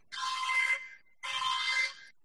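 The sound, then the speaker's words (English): An alarm bell, used as a spoiler alert bell, rings loudly in two bursts of about a second each, separated by a short gap, with no one talking. “Oh, we have a new spoiler alert bell. It's actually an alarm.”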